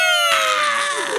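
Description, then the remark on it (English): A person imitates a metal singer's scream, voicing a single loud, piercing, eagle-like scream that holds one high shrill pitch for about a second. It turns raspy and strained partway through, then wavers slightly at the end. “He's got that weird, like, eagle kind of scream, like that fucking... I just did it.”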